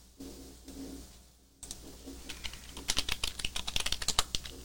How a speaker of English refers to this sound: Don't be laughing at me typing, y'all.